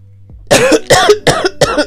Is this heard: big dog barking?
no